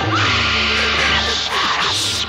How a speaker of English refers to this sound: Blood-curdling scream.